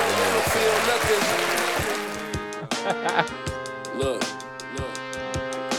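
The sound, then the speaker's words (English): A crowd claps and applauds loudly for a couple of seconds, then the applause gives way to a thumping music beat that carries on to the end. “Let me give you a little applause for you come out here.”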